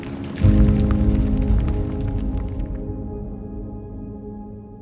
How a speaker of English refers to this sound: The sound as the rover drives across the surface, for example, will be transmitted both through the atmosphere and through the body of the rover itself. You should be able to hear the wheels kind of crunch along on the sand and on the rocks.